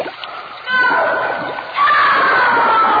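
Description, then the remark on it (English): Noisy splashing as someone runs into water, surging in two bursts and churning continuously, with faint voices in the background. “Why did you run in the water?”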